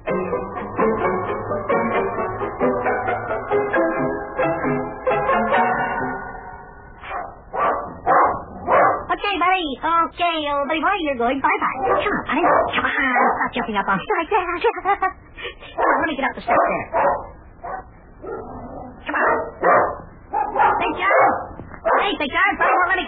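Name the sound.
dog barking excitedly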